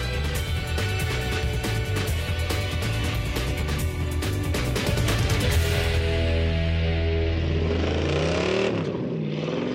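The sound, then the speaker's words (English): The engine of Beau Boeckmann's GTR1 supercar, designed at Galpin, idles on the lot with a deep, steady rumble, then revs up in rising, sweeping surges toward the end, loud with no voices. “Well, here it is, the GTR1.”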